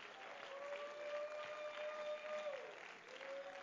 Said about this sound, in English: Come on, let's give a hand clap of praise unto the Lord right now.